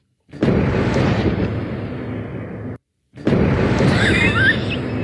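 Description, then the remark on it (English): Two loud Hunger Games cannon sound effects sound one after the other, each a broad booming roar that rumbles on for a couple of seconds before cutting off. The second carries a faint whistling crackle. “give me three cannon sounds.”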